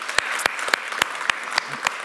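An audience applauds a man's testimony, a steady dense wash of clapping hands with sharper, louder claps popping out at a regular beat about every quarter second. No voices are heard.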